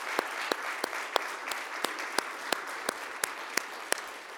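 An audience gives a round of applause: a dense, steady wash of clapping with a few sharper claps cutting through at an even, regular beat. No one speaks.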